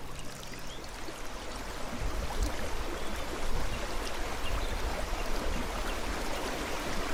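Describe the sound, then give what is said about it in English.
Continuous rushing of flowing river water as it approaches a waterfall, a dense, steady wash that swells slightly after the first couple of seconds and holds, with no voices present. “Here, we approach a waterfall.”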